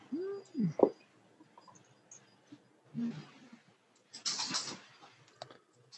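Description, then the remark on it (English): A female dog scurries about playing on a hard floor: irregular light clicks and scratchy bursts of claws, fairly faint, with a short squeaky sweep near the start. “You hear the dog scaring around on the floor.”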